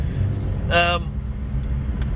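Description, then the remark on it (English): Steady low rumble of road traffic fills the scene, with a brief tonal blip near the start, like a short horn or whine, over the continuous vehicle noise. “I'm just trying to think of words here while I'm dodging traffic, sorry.”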